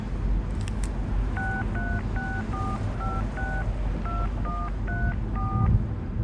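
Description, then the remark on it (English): A rapid series of about a dozen telephone keypad dialing tones, short electronic beeps of varying pitch tapped at a steady pace over a low background rumble, with no talking. “No, hang up the phone”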